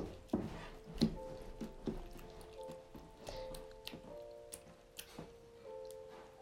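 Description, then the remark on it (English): Water pours steadily into a container, a soft trickling stream with occasional splashes and drips and a faint rising ring as it fills; no one speaks. “I just pour water here.”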